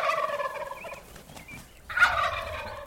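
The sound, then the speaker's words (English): A wild tom turkey, a big male weighing nearly 25 pounds, gobbles twice in spring: a loud, rubbery, rapidly rattling call that fades briefly and then bursts out again, with no other sounds. “That's the gobble of a tom turkey, a big male.”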